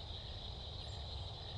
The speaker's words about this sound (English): Oh, I hear a croak. You're right. I think that was the cricket.